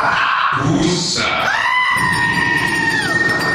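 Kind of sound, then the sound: animal, goat bleating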